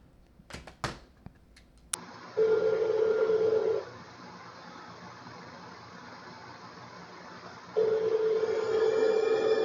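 A few quick clicks and beeps of a phone being dialed, then long steady ringback tones on the line, about two seconds each with a pause between, fairly loud and with no talking.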